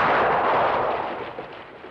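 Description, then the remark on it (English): A single loud gunshot in a film scene cracks out at once, followed by a broad, rumbling reverberation that slowly fades over the next two seconds, with no voices present. “It all goes really silent right after this gunshot.”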